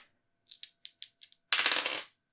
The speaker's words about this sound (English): That's not up to me. That's up to the dice. Roll to act under pressure.